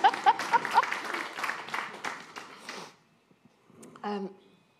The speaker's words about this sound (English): Was there a round of applause there? Yes, I'll take that.